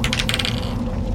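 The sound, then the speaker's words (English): Dice rolled for a perception check clatter across a hard tabletop in a quick burst of rattling clicks that settle within half a second, landing on 7, leaving a steady low hum. “I want you to roll a perception check, not an insight check.”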